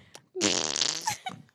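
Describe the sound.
A voice imitates a fart with the mouth, a single loud, buzzy raspberry lasting about a second, with a few faint murmurs just before and after.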